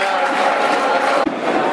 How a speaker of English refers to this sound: Great tackle, Marlon Romeo drawing applause there. That was a committed right-sided tackle on the 24. Look, I was on the break there for a moment. Good to see. Get a ball, crowd going, with a good solid tackle.